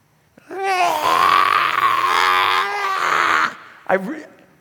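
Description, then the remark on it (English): A voice imitates mechanics screaming in fear as a truck slowly flips over: a long, strained, wavering vocal wail lasting about three seconds, followed by a brief squeaky yelp at the end. “And when we're flipping, they started screaming in such a way.”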